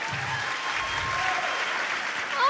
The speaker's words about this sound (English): So she deserves a round of applause for pulling all this.